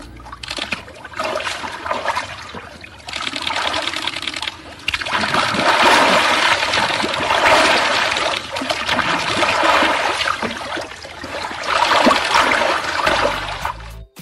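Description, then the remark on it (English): Water gently washing and trickling over objects, a steady sloshing with soft swells and splashes that rise and fall throughout, no voices. “Now that is the unmistakable sound of water, but that's kind of it.”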